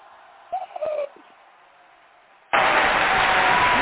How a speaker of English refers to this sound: Where's the applause? Right here. Where's the oh, you pop? Know, we got to do the sound effect. Thank you. There we go. Yay, crowd cheer.